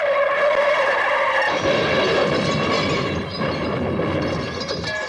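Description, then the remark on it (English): Tires screech in a long, loud skid, followed by a harsh crash of impact and shattering debris, intense with no talking: a car accident sound in a drink-driving commercial, heard as toasting wine glasses and beer mugs smash to pieces. “When the glasses are clinked together, they smash to pieces, and we hear the dramatic sound of a car accident.”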